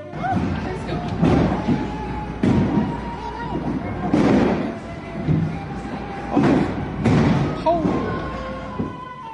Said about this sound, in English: Listen to that. That's incredible. And they show the video out the window of these giant hailstones the size of baseballs landing on the roof.